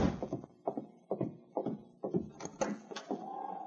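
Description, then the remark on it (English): A series of solid knocks by Sergeant Preston on a wooden cabin door, irregular and fairly loud, ending with a faint, steady higher-pitched tone that lingers after the last raps. “A moment later, Sergeant Preston knocked on the door.”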